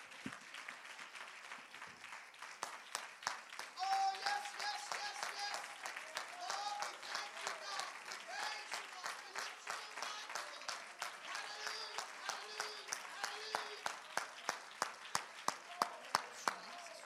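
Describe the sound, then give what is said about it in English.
An audience breaks into loud, sustained applause as a hand clap of praise to the Lord, mixed with cheering and shouted voices, then the crowd noise fades into steady rhythmic clapping in unison near the end. “Let's give the Lord a great big loud hand clap of praise because he's worthy.”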